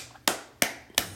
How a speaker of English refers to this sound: Listen, let me clap on that.